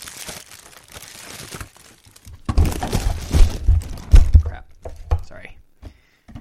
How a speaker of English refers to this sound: Saltines knocked over my microphone. Oh, you knocked over your microphone, eh?